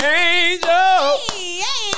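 Three sharp, evenly spaced claps ring out over a loud, sustained voice that holds a wavering, sung-like tone throughout.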